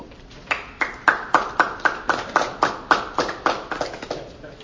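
audience clapping

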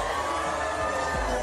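crowd cheering

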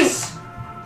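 sneeze

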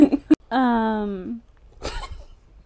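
coughing

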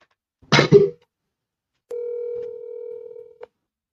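telephone dialing tones

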